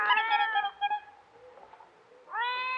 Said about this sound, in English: Sounds like a cat. Wait till I strike another match. It's our kitten.